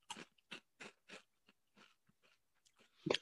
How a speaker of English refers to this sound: You're just munching on the fucking camera. That's all I hear.